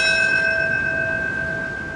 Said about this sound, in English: My specific job is to toll the bell at the proper time in history. The NYPD and Port Authority now share the task